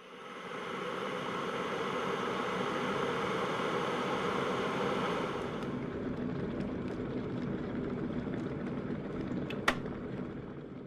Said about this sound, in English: Right, kettle's boiling. Here we go.